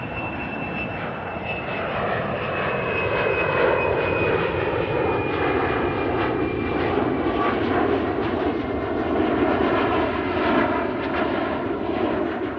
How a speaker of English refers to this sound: And the work ended with the sound of airplanes flying overhead.